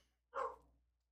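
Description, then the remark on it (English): A single sharp dog bark rings out fairly loud, then trails off quickly into near silence. No one speaks. “The dogs did not agree with me.”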